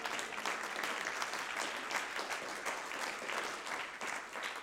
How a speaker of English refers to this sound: Oh, somebody clap your hands unto the Lord.